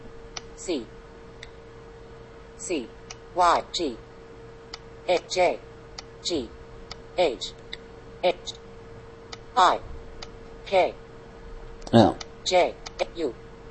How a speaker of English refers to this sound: So I'm going to go ahead and type that here, and I use the touch typing method for most of my typing. And as I type, it'll narrow down the search.